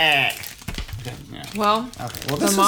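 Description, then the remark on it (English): A Monster Munch crispy potato snack bag crinkles and crackles in short, scratchy bursts, mixed with voice sounds that rise and fall around it. “Crispy potato snacks, really great. And I love the bag.”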